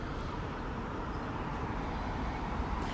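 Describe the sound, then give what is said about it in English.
A steady, low rumble of road traffic, with cars passing outside blending into a continuous wash of noise at a fairly quiet, even level, with no voices. “But right now you're just hearing some cars and I think some birds.”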